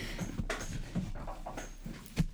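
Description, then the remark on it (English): A dog named Riley pants in quick, breathy bursts, with a few faint whimpering noises mixed in. The sound is fairly quiet and no one speaks. “Riley dog is our third wheel here.”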